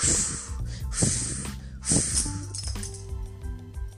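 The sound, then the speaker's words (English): Three forceful, breathy blowing puffs come at a steady pace as a voice imitates the big bad wolf huffing and puffing to blow down the first little pig's house of sticks. A clattering, ringing tail follows. “But the big bad wolf huffed and puffed and blew the house down.”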